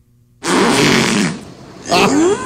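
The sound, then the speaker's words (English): A killer whale vocalizes in two loud bursts: a long, raspy, buzzing pulsed call, a brief pause, then a shorter call that slides upward into a squealing tone. “This is supposed to be a killer whale talking.”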